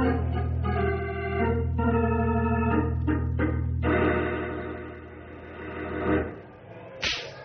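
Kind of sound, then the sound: sound effect, whip cracking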